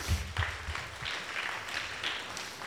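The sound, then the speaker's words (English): A crowd applauds the volunteers steadily, a dense wash of many hands clapping at an even, moderate loudness for a few seconds, with faint murmuring underneath. “Round of applause for the volunteers.”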